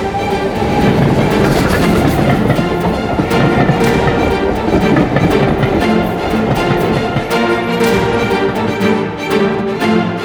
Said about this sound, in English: The train pulled up at a small wayside station, and we all descended.